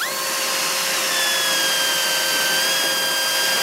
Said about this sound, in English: The police started drilling